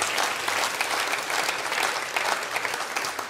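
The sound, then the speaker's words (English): A crowd claps steadily in a dense, sustained round of applause for the Lord, loud and even throughout with no voices standing out. “Come on, give the Lord a huge round of applause.”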